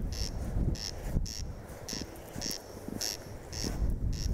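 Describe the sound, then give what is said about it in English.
A corncrake on Owey Island off Donegal, Ireland, repeats its dry, rasping double call in a steady rhythm, while gusty wind rumbles against the microphone throughout. “I could just fill this entire podcast feed with corncrake calling if you wish.”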